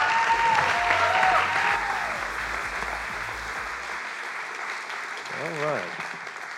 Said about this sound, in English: All right. That's a good hand clap. You guys are good. You're good. Thanks for that.